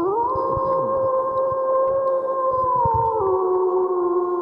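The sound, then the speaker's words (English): A long, sustained howl holds steady, then drops slightly in pitch near the end, fairly loud over a low rumbling background. “And as that howl fades out, we will jump into a preview for this week.”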